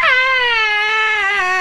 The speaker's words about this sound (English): Yeah. I feel like that wasn't the performer's scream. Rather, that was a scream from one of the judges.